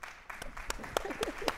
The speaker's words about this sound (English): gets all the applause. All the applause.